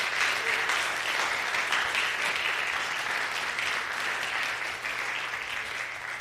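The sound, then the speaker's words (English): A crowd claps steadily in dense, sustained applause that stays fairly even for about six seconds, a broad crackling wash of many hands with no voices standing out. “So if we can give them a big round of applause, that'd be fantastic.”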